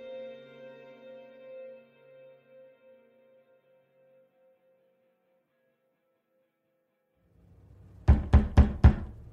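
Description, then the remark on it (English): Four loud, heavy knocks pound on a door in quick succession, coming right after a fading sustained tone and a stretch of near silence. “Next thing you know, someone's pounding on the door.”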